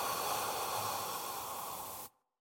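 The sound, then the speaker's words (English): A long, airy breath, breathed in deep and out as a calming exercise, rushes steadily for about two seconds, breathy and hissing with no speech, then stops abruptly into silence. “But when you're breathing, you breathe in deep and you breathe out.”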